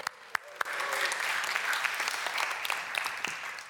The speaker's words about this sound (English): Let's give him a cheer.